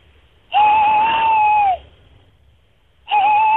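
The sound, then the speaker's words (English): A person imitates an owl with a loud, steady, high hoot held for over a second, then starts a second matching hoot after a short pause. No one talks. “Well, that's a wonderful owl you're doing.”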